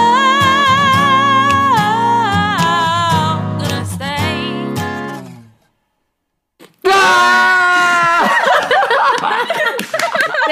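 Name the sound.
audience screaming and cheering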